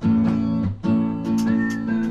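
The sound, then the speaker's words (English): Loud, sustained whistle tones from a played video ring out in two long blasts separated by a brief break near the middle, rich and steady, with no voices over them. “Oh, we got the whistles. I like the whistles. They go woo woo.”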